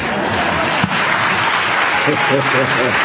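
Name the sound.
audience applauding and cheering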